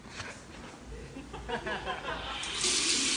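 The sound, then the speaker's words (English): A water tap is turned on and runs steadily, a splashing hiss that grows louder and brighter toward the end as the flow strengthens into the sink. “That's the water going on.”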